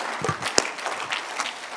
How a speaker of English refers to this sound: Clap your hands unto the Lord if you really believe this is that.